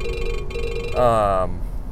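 A phone ringtone plays, a bright electronic tone that repeats and swells into a fuller, warbling burst before cutting off. A low background hum sits underneath.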